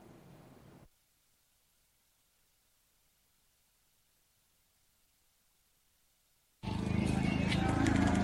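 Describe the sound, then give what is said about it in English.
A brief low rumble, then a long near-silent stretch, before heavy dawn rain suddenly bursts in as a loud, dense hiss that continues steadily to the end; a cold early morning, a few minutes past 3 a.m., at the gates of the Electoral Commission office in Asokore Mampong, Ashanti region. “It's a few minutes past 3 a.m., a little cold as the dawn light rains get heavier.”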